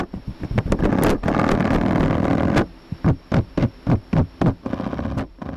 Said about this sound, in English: We're only able to hear these spiders because of a laser vibrometer, which records their tiny vibrations. Researchers in Damian Elias's lab at UC Berkeley gathered the mating calls of many different species of spiders.